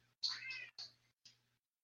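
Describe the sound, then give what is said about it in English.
A house cat meows loudly and insistently, yelling at a dog, one long drawn-out cry followed by two shorter ones, with no talking over it. “I hear the cat meow.”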